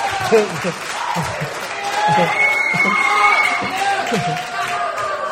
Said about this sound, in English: So can you give your gentlemen here a round of applause and show them some love here today? Show them some love.